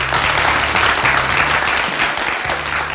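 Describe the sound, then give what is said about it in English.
An audience applauds loudly and steadily to welcome a speaker, a dense wash of many hands clapping at once, sustained without pause for the whole stretch, with a faint low hum underneath. “can we have a big round of applause for Pierre Kristiansen?”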